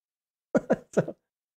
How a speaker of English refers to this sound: Nope, I just had to sneeze.